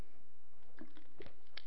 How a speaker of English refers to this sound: I'm going to get a drink of water first.